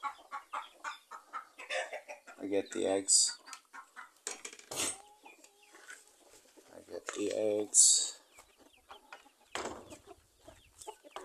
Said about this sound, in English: So I'm going into their place, and the chicken is super scared. I get the 3 eggs.